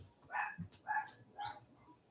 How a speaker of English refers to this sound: Typically, someone started mowing the bloody lawn as well. So my dog's going nuts. Bear with me one second.